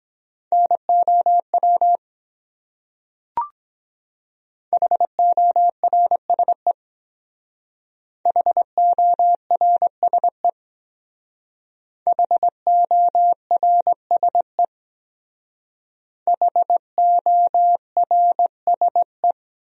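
Morse code beeps at about 17 words per minute, sending words from a top 300 words practice set: a steady mid-pitched tone keyed into quick dots and dashes, sent in five separate bursts with pauses between, plus one brief click early on.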